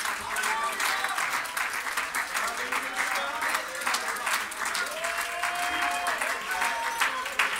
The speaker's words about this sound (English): Would you put your hands together and shout to Jesus?